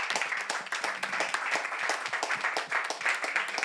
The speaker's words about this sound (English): We have a round of applause, ladies and gentlemen, for this.